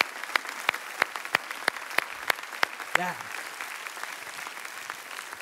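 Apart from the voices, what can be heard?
audience clapping hands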